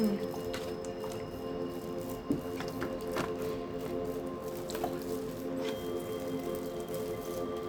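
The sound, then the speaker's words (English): Wet swallowing and sipping sounds of a person drinking water, a few soft gulps and liquid squishes spaced out over a steady low background hum, with no talking. “I had to take a water. Bear with me.”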